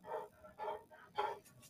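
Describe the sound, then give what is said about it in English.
A growly dog lets out three or four quick, gruff barks in an uneven rhythm, moderately faint, with no one talking. “a growly dog that barked every once in a while.”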